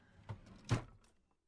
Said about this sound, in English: Unwantingly, I step towards the open door amongst its closed brethren. A chill runs up my spine. Time feels slow as I reach out and close the door.